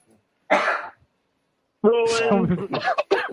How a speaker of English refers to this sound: Yeah, I'm sorry. I have a cold. It's called, ladies and gentlemen, it's called a snarf. It's a combination between a sneeze and a cough. I like the sound.